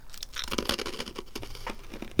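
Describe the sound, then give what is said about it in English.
Someone crunches a cinnamon-smelling snack taken from a box, giving a steady run of irregular, crackly bites and crinkles with no talking, ending on one sharper, louder crunch. “Definitely got the crunch factor.”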